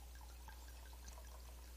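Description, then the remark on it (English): Wine from a freshly opened bottle pours into a glass in a church in a steady, quiet trickle with soft splashing. No voices, just a low background hum beneath the liquid. “What if I pour some in this glass?”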